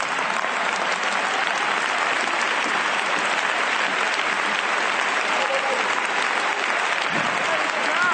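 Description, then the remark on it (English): An audience applauds steadily during a sermon for about eight seconds, a dense, even wash of many hands clapping at once with no pauses, loud throughout. “All the smart people ain't clapping.”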